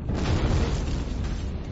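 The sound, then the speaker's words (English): A loud, deep, continuous roar of a volcanic eruption explosion creating a 30-mile-high fountain of magma, dust and ash, heavy low-end rumble sustained throughout with no pause, overwhelming, no voices present. “This caused an absolutely vast explosion, creating a 30-mile-high fountain of magma, dust and ash.”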